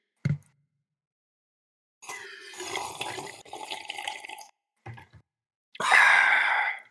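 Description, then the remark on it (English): Tap water is sipped: a short mouth sound, then a couple of seconds of gurgling, splashing water, two brief gulps, and a final louder rush of water. No one speaks. “Let's take a sip.”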